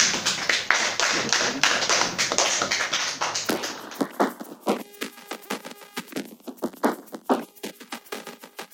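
Students in a classroom clap for a classmate after a maths answer, a burst of dense, overlapping applause that thins into scattered, sharp individual claps with uneven rhythm, fairly loud throughout and with no voices.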